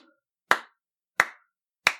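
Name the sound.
slow clap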